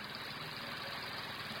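A motorbike engine idles in Funafuti with a steady, low, rumbling throb and a faint rattling vibration, holding an even level throughout without revving up or cutting out.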